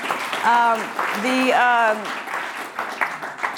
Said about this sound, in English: Thank you. Yes, another round of applause, please.